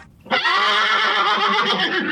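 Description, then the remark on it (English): A horse neighs loudly, one long, quavering whinny that bursts in suddenly and holds for nearly two seconds with a shaky, vibrating pitch. “Whoa, hold on there a minute, Boots. When you hear that sound”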